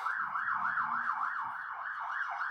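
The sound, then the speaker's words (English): A passing police car's siren wails in a fast, repeating rise-and-fall yelp, about two cycles per second, holding steady and fairly loud over low traffic rumble, with no voices. “That was a police car.”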